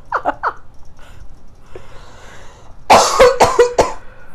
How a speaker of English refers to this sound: Thank you for coughing away from your mic. I don't know what that was. I think I inhaled a fuzz. Because I felt something real specific. I'm like, ooh, to my larynx.